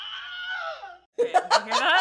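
A sharp, falling cry of pain, the Wilhelm scream stock movie sound effect, lasting about a second, followed by a brief silence and then bursts of laughter.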